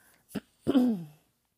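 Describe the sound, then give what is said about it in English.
A person clears their throat: a short, sharp catch followed by a longer, rougher rasping push that fades out, with no talking. “Like clearing my throat hella.”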